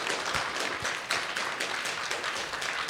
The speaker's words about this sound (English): Round of applause.